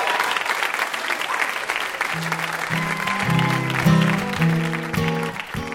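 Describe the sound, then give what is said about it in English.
An audience on the show Ask Me Another claps loudly and steadily for VIP guest Justin Long throughout, a dense crackling wash of applause. After about two seconds, sustained musical notes begin playing beneath the clapping. “One more round of applause for our VIP, Justin Long.”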